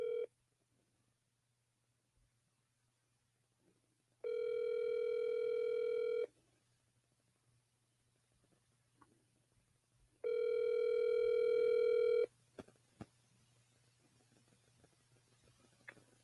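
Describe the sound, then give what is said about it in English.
An outgoing phone call to an attorney's cell phone ringing: two long, steady electronic ring tones about four seconds apart, heard clearly over a faint low hum with small clicks and handling noises between rings. “We're going to call him right now.”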